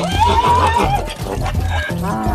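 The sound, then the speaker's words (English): A donkey brays loudly, a harsh, wavering call that rises and falls in a couple of strained surges across the whole stretch, with no talking over it. “Donkey. Here, boy. Here. Still not donkey.”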